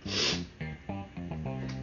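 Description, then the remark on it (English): A person yawns: a long, breathy intake of air followed by a series of low, drawn-out voiced groans that rise and fall slightly before trailing off. “Obviously, I don't breathe enough because I have to yawn.”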